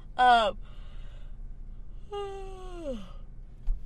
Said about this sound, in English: I'm honored to get a yawn. Hey, the best ones get the yawns.